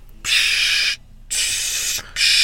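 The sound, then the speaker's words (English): A voice imitates the hiss of nitrous balloons being filled, a sound heard outside as a show was ending: three loud, steady bursts of breathy hissing separated by brief pauses, the last one cut off. “She said, are those the nitrous balloons that you talk about?”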